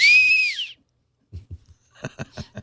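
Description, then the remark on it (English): A short, bright whistle in imitation of a bird's tweet, sliding up and then down in pitch, fairly loud, followed by a pause and then low, indistinct voices. “It's an analog tweet.”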